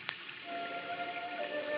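Hard rain pours down after midnight over a low hill overlooking the town of Carteret, in a steady, dense hiss with no talking. A single sharp click comes at the start, and faint thin tones hum beneath the downpour.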